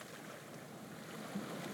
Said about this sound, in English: You look down at the water and hear the sounds of the ocean lapping at the side of the ferry boat.